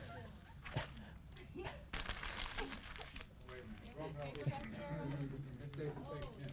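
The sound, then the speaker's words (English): Scrap paper crinkles and crumples in bursts of rustling noise, strongest early on, while voices talk over the later part. “It's scrap paper.”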